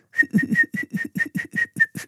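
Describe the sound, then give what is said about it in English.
A breathy whistled note on a kōauau flute, held at one steady pitch and pulsing in about ten quick, even bursts, with airy rumble beneath and no talking. “I said, now put your kowawa over here and then slowly whistle. I don't want to hear you blow, whistle.”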